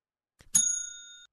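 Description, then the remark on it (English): A single bright bell ding, struck once as a spoiler warning after a couple of faint clicks, its clear metallic tone ringing out and fading over about a second. No voices. “We can talk about spoilers right here. Yeah, let's hit the bell here.”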